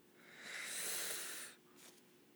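A single long, breathy yawn swells and fades over about a second, followed by a short soft exhale. It is fairly quiet, with no talking.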